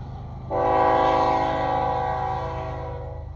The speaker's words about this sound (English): In 1880, the first whistle of a steam locomotive resonated across the landscape, marking a dawn of a new age.